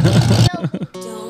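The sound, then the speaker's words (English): A loud race car engine roars, then revs in a few quick bursts before settling into a steady, droning idle. “fire that mother up. That's a little louder than your car, ain't it?”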